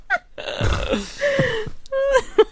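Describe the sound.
A person imitates fart noises with their mouth: a few buzzy, wobbling voiced bursts strung together over a couple of seconds, with no words spoken.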